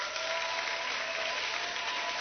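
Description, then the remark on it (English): An audience claps steadily for a man being thanked, a dense, continuous wash of many hands applauding at once, filling the whole moment without pauses or voices on top. “Oh, clap for him.”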